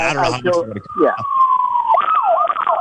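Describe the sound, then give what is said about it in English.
A police siren wails after a moment of talk: one long tone sliding slowly downward, then quick rising-and-falling yelps, loud and steady over the background. “did you get the cops called on you?”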